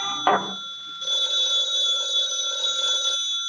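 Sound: telephone ringing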